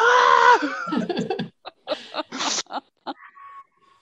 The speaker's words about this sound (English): The vixen scream. It sounds like something you'd hear at Halloween. Ooh. That's what the fox says.